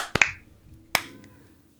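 Sharp hand claps made to sync audio for a recording ring out with no voices: a quick double clap followed a moment later by one more crisp clap, each decaying.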